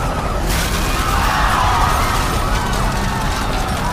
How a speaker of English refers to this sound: The violent chase ultimately leads them to a major structure, Gotham Garden. Unable to avoid it, all three vehicles burst into the arena.